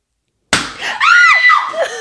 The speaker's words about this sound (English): Remember, babe, how I was always so scared of popping balloons or them popping on me, and then I had to work with balloons.